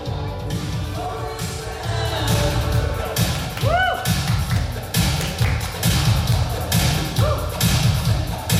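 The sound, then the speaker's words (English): A song opens with a driving drum intro: steady, loud kick and snare hits with bright cymbal crashes in a repeating rhythm, joined by a few sliding tonal notes. “Nice drum intro.”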